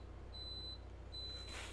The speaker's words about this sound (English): And that's my coffee maker.